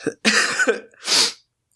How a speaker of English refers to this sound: Long story short, my wife just let out a loud cough. We're both sick. So that's who you guys heard.